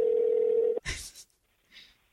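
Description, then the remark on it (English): A phone's ringing tone from an outgoing call, with the phone held up to a microphone, plays as one steady, buzzy electronic note for almost a second, then cuts off into a brief rustling burst and a fainter hiss. “I gotta kind of hold this up to the phone just so that I can both talk in the mic and in the phone at the same time.”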